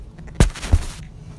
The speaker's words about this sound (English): I'm actually going to have to set this recorder down and then pick it back up. So hold on.